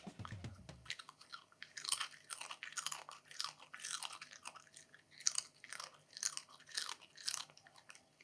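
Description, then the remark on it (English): A dog chews food, a steady run of wet crunches and smacking bites repeating every half second or so, with a brief low thump at the start and no talking. “Did you get some dog chewing gentle gravy? ASMR.”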